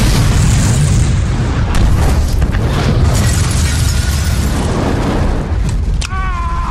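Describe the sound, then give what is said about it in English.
A bomb explosion, loud and roaring, with deep rumbling and sharp crackling bursts that keep going for several seconds, then a brief ringing, wavering tone near the end. “I love bombs.”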